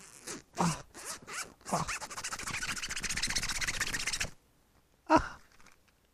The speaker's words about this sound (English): Came in a little protective pouch. With a zipper? Here, let's do the zipper.